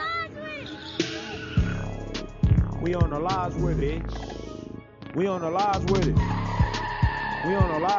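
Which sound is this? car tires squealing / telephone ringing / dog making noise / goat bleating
car tires squealing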